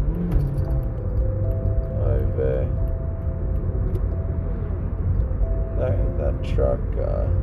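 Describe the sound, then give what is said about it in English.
Steady, loud road rumble from inside a moving vehicle, with engine drone and tonal swells as a large truck passes in traffic while the driver merges. “That truck was just letting me merge in, but that was annoying.”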